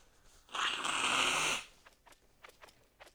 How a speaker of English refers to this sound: I gotta blow my nose. Hold on.